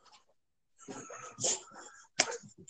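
Dog noises: a string of snorting, huffing bursts, the loudest ones in the middle and then a sharp sneeze-like blast near the end, with brief quiet gaps between them.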